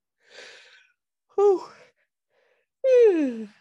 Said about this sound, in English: Yawning is always good. It's a releasing of something cool. It's also very early in my time zone.